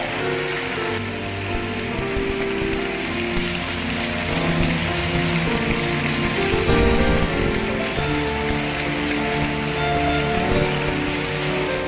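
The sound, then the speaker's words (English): A crowd claps continuously to encourage people coming forward, in a dense, steady patter, filling the whole stretch over a sustained backdrop of tonal music, with no voices rising above it. “Keep clapping, brethren.”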